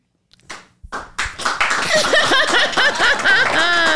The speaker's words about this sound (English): Is that you start the slow clap?